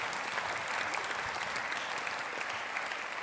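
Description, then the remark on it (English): An audience claps steadily to welcome panellist Willow Mulwada from the Kalkadoon and Eastern Aranda Nations as he makes his way up, a dense, even wash of many hands with no voices on top, holding at a constant moderate loudness for the whole few seconds. “Big round of applause while he makes his way up.”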